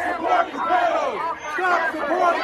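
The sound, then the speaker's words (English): A crowd of protesters yells and chants at once, many overlapping raised voices forming a loud, continuous roar with rising and falling shouted pitches throughout. “We reason based upon facts, and we can't reason based upon facts when we're yelling stuff like this.”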